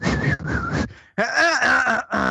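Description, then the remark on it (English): A person briefly mimics whistling with their voice, producing a short, wavering melodic phrase, preceded by a couple of breathy, hissing bursts. “but this one guy would walk in and piss, and, like, he would, like, start whistling and fucking tapping his foot, and for some reason that would just irritate the fuck out of me.”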